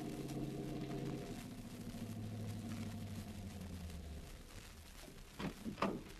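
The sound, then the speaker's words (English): A car engine hums steadily, its low drone sliding lower over several seconds before fading as the car drives off from a Greyhound bus station, followed by a couple of brief rustling thumps near the end. “Then she gets back into the car. And they drive off.”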